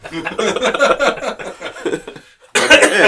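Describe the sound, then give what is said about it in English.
Someone coughs loudly right into the microphone near the end, a harsh close-up burst that follows a couple of seconds of breathy, chuckling vocal sounds and a brief pause. “Coughing in the microphone.”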